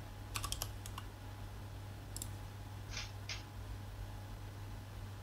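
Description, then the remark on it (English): Keys clatter on a mechanical keyboard in short, scattered bursts: a quick cluster of clicks, a pause, then a few more taps. The sound is faint and sits over a steady low hum. “It's those mechanical keyboard people.”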